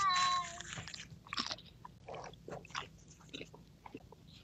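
chewing food

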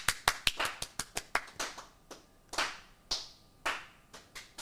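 round of applause

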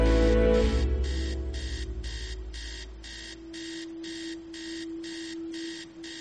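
alarm clock ringing

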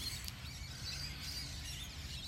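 birds singing

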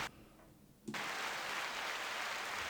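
applause clapping sound effect

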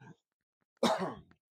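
cough

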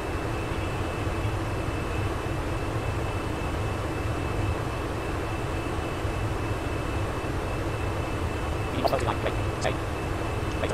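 airplane engine drone

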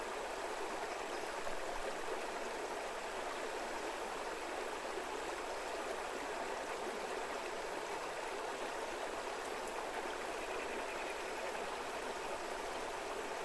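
flowing stream water

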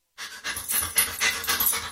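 dog panting

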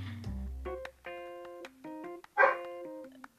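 dogs barking

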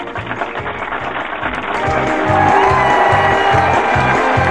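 audience clapping and cheering

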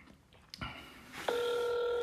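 outgoing phone call ringing

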